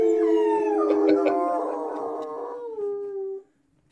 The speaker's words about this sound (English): My dog's howling too.